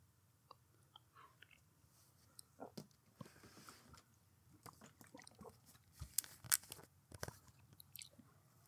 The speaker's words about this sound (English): So I'm going to use the straw to drink since it was provided. I feel I should use it.